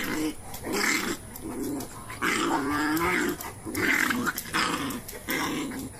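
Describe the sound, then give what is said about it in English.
A dog in a video being watched growls and snarls in a string of rough, rumbling bursts with brief pauses between them, loud, with no one speaking over it. “Why is this fascinating to me? Because you like dogs.”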